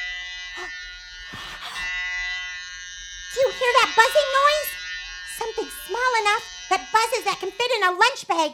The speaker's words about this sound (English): Makes a bzzz noise. Bees! Bees! You're absolutely right. Oh, they're bees, but listen. Bees in a lunch bag.